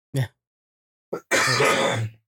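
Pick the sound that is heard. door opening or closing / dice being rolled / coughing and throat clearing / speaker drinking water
coughing and throat clearing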